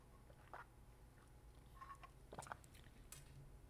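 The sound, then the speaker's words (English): Someone takes a quiet sip of a drink: a few soft, brief slurping and swallowing clicks spread over several seconds, with no talking. “I am going to take a sip of my drink.”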